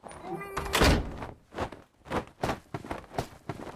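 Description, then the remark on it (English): A door swings shut with a solid thunk, preceded by a brief creaky squeal and followed by a few soft, evenly spaced thuds like footsteps. “Close the door, Doctor.”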